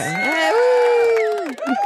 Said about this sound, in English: We have applause on this thing.